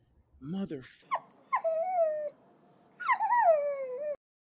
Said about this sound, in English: Dude, I have neighbors, and I swear they just came through. Did I tell you about this dog? Did I tell you about the dog just howling? No, but I can hear it.